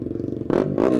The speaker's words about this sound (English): Just that noise you just hear in the background there. The Moto3 machine as number 40 goes past us.